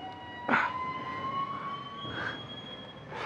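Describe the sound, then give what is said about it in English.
A bin lorry at the end of a driveway tipping glass bottles: three rough crashing bursts of clattering glass, spaced a second or more apart, over a steady whining mechanical drone. No one speaks. “Now, either there's a dinosaur that's eating glass bottles at the end of my driveway, or the bin lorry's appeared.”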